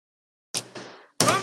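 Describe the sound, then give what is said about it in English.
Two quick knocks on a wooden surface, fairly soft, each ringing out briefly, then a louder burst of sound follows. “Knock on wood, baby. Knock on wood.”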